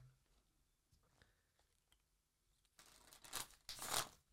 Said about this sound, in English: Give the deck a shuffle, please.